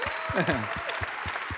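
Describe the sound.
A church audience applauds its pastors in a dense, steady wash of clapping, with a voice calling out over it and low thumps pulsing at a regular beat underneath.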